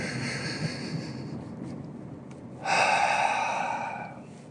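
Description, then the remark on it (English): A long, slow deep inhale with a soft airy hiss, then a louder, fuller exhale rushing out for over a second before fading. No talking. “Take a deep breath in with me real quick.”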